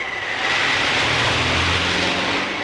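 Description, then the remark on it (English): A small Volkswagen car, working in Antarctica, revs its engine loudly, a steady throaty roar with a rising hum mixed with a broad rushing hiss, lasting a few seconds with no talking. “We didn't call our little car the snow bug for nothing.”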